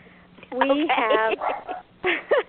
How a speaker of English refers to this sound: I think we have Yvonne Mason's puppy in the background, too